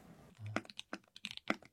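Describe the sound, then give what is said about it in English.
Quick, uneven clicks of keys being typed on a computer keyboard, crisp, with a soft low hum at the start before the tapping begins. “Keyboard sounds.”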